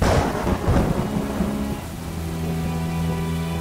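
A deep rumble of thunder rolls through steady rain, loud at first and then fading into a low, continuous storm roar with no voices.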